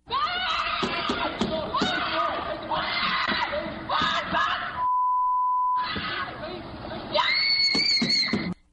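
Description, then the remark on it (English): Loud, frantic screaming and shouting from people in distress during an attempted carjacking in Washington, D.C. on a woman with her child in the car, interrupted midway by a steady one-second censor bleep, then a shrill, high-pitched scream near the end. “This happened in Washington, D.C. to a woman with her child in the car, attempted carjacking.”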